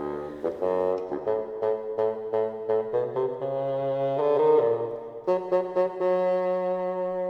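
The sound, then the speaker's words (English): A bassoon plays the grandfather's part, a gruff, bouncing melody of short detached notes with a few held tones, steady and fairly loud throughout with no voices. “Grandpa, oh, that old man is played by the bassoon.”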